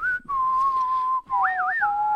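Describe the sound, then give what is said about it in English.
Two people whistle a tune together, one holding a steady note while the other warbles above it in a higher, wavering line. Clear, with no talking and only brief breaths between phrases. “We whistled together on, we did.”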